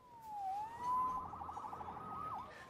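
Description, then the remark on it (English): A police siren wails, its pitch sliding down and back up before breaking into a fast warbling yelp, heard over a low traffic rumble with no one speaking. “Saved by the siren.”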